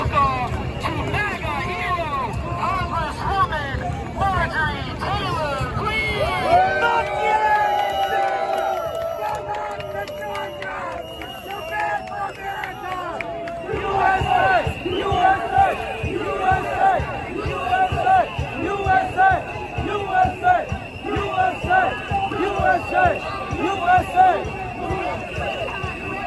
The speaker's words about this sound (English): Now, she was drowned out, as you heard, by the chanting and the whistling.